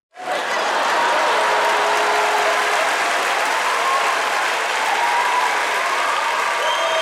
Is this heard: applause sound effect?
yes